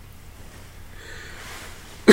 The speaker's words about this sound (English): Oh, I've been preventing a cough for this entire thing.